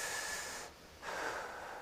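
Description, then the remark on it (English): A standing audience taking a deep breath together on a count of three: a long, airy rush of many people breathing deeply, a steady breathy whoosh that briefly fades in the middle and then swells again, with no talking. “Everybody take a deep breath, okay?”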